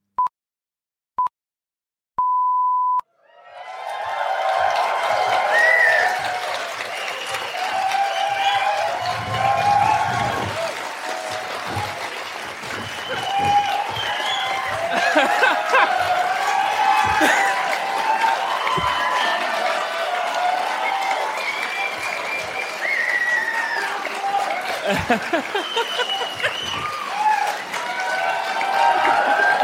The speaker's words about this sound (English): Imagine if you just never stopped clapping. That was like 3 hours goes by.